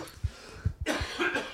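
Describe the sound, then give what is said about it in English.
A harsh coughing fit: several rapid coughs in quick succession, rough and breathy, with hoarse wheezing air between bursts and no speech. “We're coughing fits today.”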